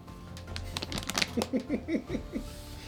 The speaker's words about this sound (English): Was that somebody's tummy gurgling? No, that was... That was a dog. That was my bitty boy.